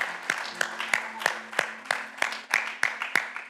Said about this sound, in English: Church, could I have us give a huge clap of praise to Jesus this morning?